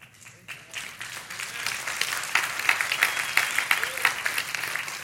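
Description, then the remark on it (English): A large crowd applauds in answer to the question "Who's up for an adventure?", a dense wash of many hands clapping that swells after a second and holds steady and fairly loud for several seconds, with no voices over it. “Okay, there's about 500 of you that did not clap.”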